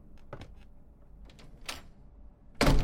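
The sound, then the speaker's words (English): A few soft clicks and rattles, like a latch being worked, followed by a louder, rushing scrape as the unlocked door of a large mansion swings open. No voices are heard. “I walked in the large mansion and the door was unlocked.”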